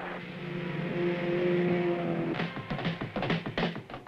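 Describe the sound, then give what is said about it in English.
A racing car engine drones with a steady high-pitched whine during a race, then breaks into loud, choppy revving bursts as the car pulls away. No one speaks. “Such features as rear-view mirrors, stronger bumpers, and improved suspension came directly from testing cars in competition.”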